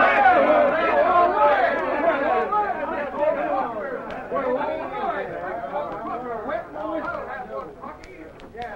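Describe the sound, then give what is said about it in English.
A crowd of men yells and celebrates a victory over Transcontinental, many excited voices overlapping in a steady, boisterous roar that runs throughout and eases slightly toward the end. “Listen to the fools. Hear what they yelled?”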